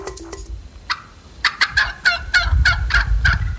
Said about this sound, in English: In early Minnesota history, these sounds were common. Turkeys clucking and calling.